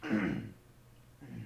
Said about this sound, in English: And pardon me for a moment, I clear my throat.